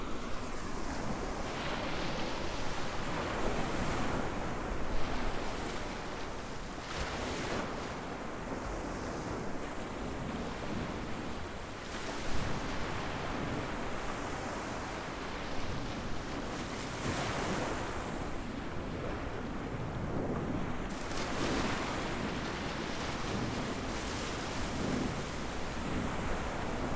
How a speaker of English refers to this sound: We're on the beach at Exmouth. At the start of today's long walk to Seaton. The date today is 3rd of October 2013. I'm expecting rain today, and it's a pretty blustery start to the day, as you can probably hear.